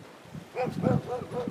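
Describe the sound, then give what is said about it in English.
A dog barks several times in quick succession at someone walking past its beachfront on a rocky beach, the barks fairly faint over soft outdoor background noise, with no talking. “This dog I knew wasn't going to like me walking by his little beachfront.”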